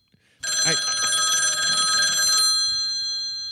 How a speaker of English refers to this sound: Adam, answer the phone. Answer the phone.